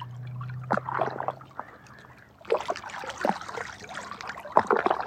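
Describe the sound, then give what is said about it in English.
Water sloshes and laps irregularly against billion-year-old rocks, with soft splashes and trickles; a low steady hum runs underneath early on, and the lapping grows busier in the second half. “The mystery of this water that's been here, cycling and cycling, carrying songs.”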